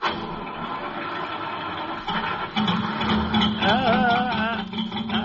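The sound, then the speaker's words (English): A cold car's engine turns over with a grinding mechanical churn, then catches and settles into a steady rough rumble, its pitch rising and wavering briefly as it revs. “If I can just keep the motor running until it warms up.”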